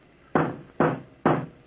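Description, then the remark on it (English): A fist pounds on old Peter's door three times to wake him, in steady rhythm, each blow a heavy, booming thud that rings briefly before the next. No one speaks. “Hey, you old Peter, wake up before I pound the door down!”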